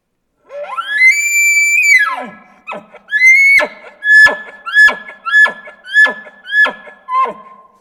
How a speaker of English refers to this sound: Kind of a basic bugle with grunts and then kind of that squeaky bugle, younger bull chuckle. Okay, here's the basic bugle with grunts.